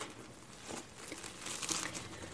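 The soft white inside of bread, crust removed, being torn into pieces and crumbled by bare hands while cooking, giving a steady run of quiet crinkly, rustling tears and small crumbly crackles with no talking.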